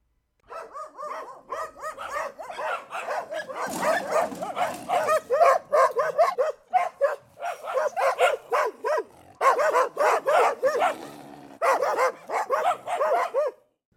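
Dogs bark angrily in a loud, nearly continuous volley, overlapping sharp barks coming in rapid bursts with only brief pauses, with no one speaking.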